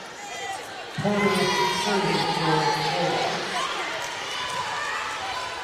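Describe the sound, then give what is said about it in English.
A crowd at a high school volleyball match at Harper Creek bursts into cheering and shouting after a short quiet stretch, holding a loud, sustained roar with excited voices mixed in, while a ball bounces and shoes squeak on the court. “A good atmosphere here tonight here at Harper Creek. Good crowd, both squads.”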